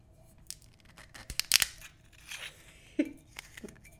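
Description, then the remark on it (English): A twist-off wine bottle cap being cracked open: a run of dry, crunchy snaps and tearing clicks, with a louder burst partway through, then a few sharper clicks trailing off. “This is a twist-off bottle, so you're going to get the full effect.”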